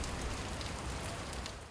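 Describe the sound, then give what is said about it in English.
Steady rain falling while rugby players practice for the Rugby Sevens in Hong Kong, a dense continuous hiss of drops pattering on a surface with low rumble underneath, holding an even level throughout with no voices. “Today, rugby players practice in the rain ahead of the return of the big tournament and big hopes for the revival of a city.”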